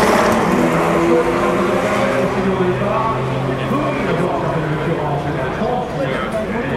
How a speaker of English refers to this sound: And they release the GTs. Listen to this chorus of beautiful noises. Listen to the Ferrari sing and the Corvettes bark. Those are the Fords.